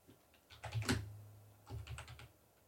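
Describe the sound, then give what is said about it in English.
Rapid typing on a computer keyboard, typing in "Dominic Toretto's muscle car": a quick burst of soft clicking keystrokes, one sharper clack, a brief pause, then another short flurry of keys, with no voices. “Just type in Dominic Toretto's like muscle car.”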